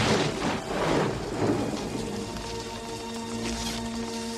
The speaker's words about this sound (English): Hold on. I got to close my window. It's all of a sudden like torrential downpours.